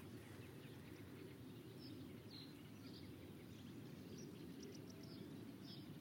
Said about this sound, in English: Quite faint songs of reed buntings. Reed buntings and reed warblers. Yeah, this is singing from the tops of little willow trees and in the reed beds. Hello, reed buntings.